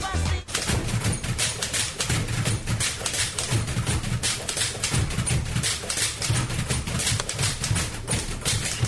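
A song performed entirely on typewriters: dense, rapid clacking keystrokes in a steady rhythm over low humming tones, loud and continuous throughout with no voices.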